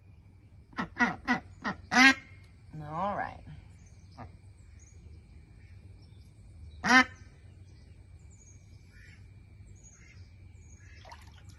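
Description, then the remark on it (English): A quick series of loud, nasal quacks from ducks being handled and washed with warm water and belly rubs, followed by a raspy call and a brief spoken phrase, then one more sharp quack after a pause over quiet background hum. “Duck Therapy”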